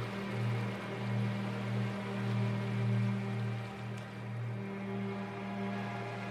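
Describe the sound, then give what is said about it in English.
A continuous watery wash of ocean waves with gentle swells in loudness, layered over a steady low humming drone throughout. “The sound of the ocean is incredibly soothing.”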